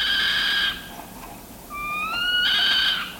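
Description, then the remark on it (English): Two high-pitched, whining meow calls from a northern saw-whet owl: a steady one, then a longer call that rises slightly in pitch before swelling. Eerie, cat-like and fairly loud, with no talking. “When agitated or threatened, the saw-whet gives what ornithologists describe as a decidedly uncanny, high-pitched meow.”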